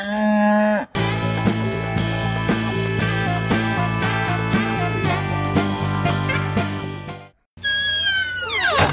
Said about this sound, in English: Well, I thought two cows doing that, you would be impressed.